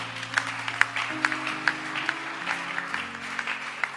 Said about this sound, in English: Clap your hands for Prof.